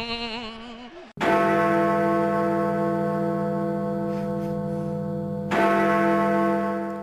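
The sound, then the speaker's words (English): A short 'phone a fan' segment jingle: a brief wavering tone gives way to a loud, rich bell strike that rings on and slowly fades, then a second strike about four seconds later. No talking. “So, like we said, phone a fan after this jingle. Dong!”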